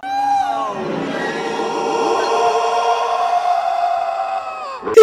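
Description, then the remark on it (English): A loud, sustained creature roar, DV9 playing the sound of a crate dragon, with layered, wavering tones that swell and hold for several seconds before cutting off abruptly, followed by a brief sharp burst at the end. “Tosh notices there's some faded Imperial insignias on the wall, and then something roars! Is it Hool? It's DV9 playing the sound of a crate dragon to freak out Bebo.”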